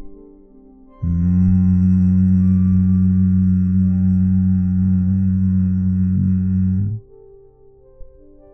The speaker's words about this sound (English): It sounds a little like that long hum. We can think of this as coming from the roof of the mouth and the lips, maybe having a steadying effect on the mind. So breathing in through the nose, exhaling to hum.